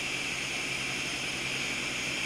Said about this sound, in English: So I'm going to blend this again now for 60 seconds. I mean, it ultimately depends how good your blender is. Yeah, this is a strong blender.